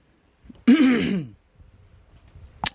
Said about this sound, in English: Stop coughing into the goddamn mic. Or what is it, clearing your throat?